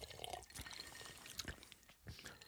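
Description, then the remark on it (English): Suntory whiskey is poured into glasses in short splashy bursts with faint clinks, fairly quiet, with no talking over it. “we should clearly taste this. Yes. This is the Suntory. whiskey.”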